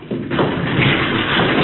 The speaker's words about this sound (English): You can see the lights reflecting from something. It looks like a door. It is. No, it's a heavy lead door.